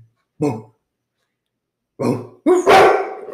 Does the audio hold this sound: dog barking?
yes